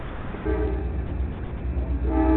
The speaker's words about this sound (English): Wait, the train's coming through.